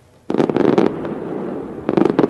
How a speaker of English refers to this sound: The joy of the New Year's Eve fireworks, often short-lived.